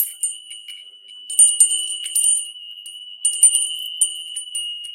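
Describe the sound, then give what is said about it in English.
Wind chimes ring continuously with a sustained metallic tone and scattered bright tinkling strikes that cluster in bursts, moderately loud, with no voices present. “Wind chimes are very good to have around.”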